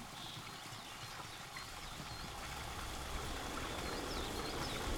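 Water boiling in a pot, a dense, steady bubbling and rushing that grows slightly louder over the five seconds, with no voices.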